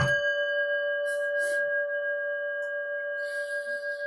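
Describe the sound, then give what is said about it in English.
A meditation bell is struck once and rings out clearly, its steady shimmering tone sustaining without fading for several seconds, heard alone with no voices. “I think that warrants a bell.”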